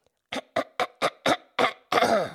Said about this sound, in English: You had to clear your throat. Yeah, it was a feather or a frog or something. I think it was a frog. Yeah, it's gone now.